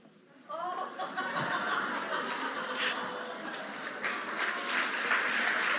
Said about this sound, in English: Now, I hear your judgmental laughs under your encouraging claps, but despise not the day of small beginnings.